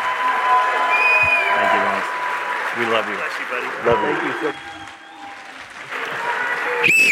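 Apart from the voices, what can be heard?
audience applauding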